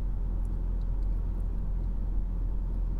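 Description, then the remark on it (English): A Mercedes SLS AMG engine idles steadily at Goodwood with a deep, even low rumble, constant throughout, before the car pulls out, with no voices and no revving. “Gareth Drives Goodwood in an SLS AMG”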